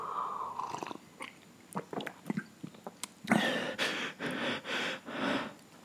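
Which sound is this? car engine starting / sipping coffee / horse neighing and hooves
sipping coffee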